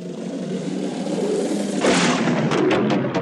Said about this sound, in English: Here's a little impacty one.